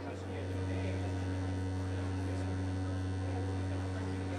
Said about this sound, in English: Listen. Do you hear it? It's a curious humming sound that seems to come from inside the object. I'll move the microphone nearer.